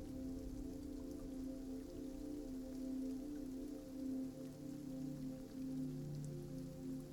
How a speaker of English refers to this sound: Just the rain. Where is it? Can you say that it's not behind? Can you say that it's not in front? Just listen.